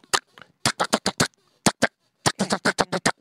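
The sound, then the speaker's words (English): A voice imitates M16 rifle fire with sharp, staccato mouth bursts in quick clusters: a pair, a fast run of four, another pair, then a longer rattling volley, loud. “Can you do an M16? Well, M16 is a little bit more staccato, so it's”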